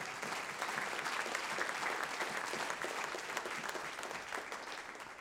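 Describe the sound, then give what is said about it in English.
A crowd of people claps their hands in dense, sustained applause during a sermon, to show they believe we are living in the last days, the many overlapping claps holding a steady, fairly loud level for several seconds with no voices speaking over it. “Don't clap your hands if you believe that today.”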